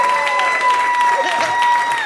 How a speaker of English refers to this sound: Give yourselves a round of applause for sitting through this whole thing.